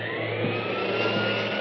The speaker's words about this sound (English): Can't hear you over the vacuum.